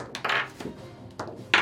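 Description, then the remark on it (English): Dice tumble and clatter across a hard wooden surface during a tabletop role-playing game, in a few quick bursts of knocking, rattling impacts, with brief pauses between them and no talking. “Not the dice tray.”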